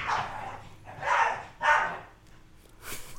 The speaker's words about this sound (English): Damn coyotes. They're out there hunting. Here in Alaska. Aliens. Coyotes get out of control sometimes.